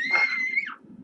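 A high-pitched scream holds a shrill, steady tone for over half a second, then slides downward and breaks off, leaving a low rumble of background noise.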